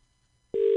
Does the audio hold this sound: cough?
no